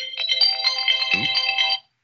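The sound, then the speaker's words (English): A phone alarm chimes in a bright, electronic melody of quick repeating notes, fairly loud and steady for almost two seconds before cutting off abruptly. A brief low vocal sound briefly overlaps it midway. “My alarm went off.”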